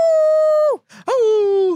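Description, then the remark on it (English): Two long, steady dog howls, each holding one pitch before sliding down at the end, with a short breathy gap between them. “if an ambulance goes by, she'll start doing it, but she only howls when an ambulance goes by”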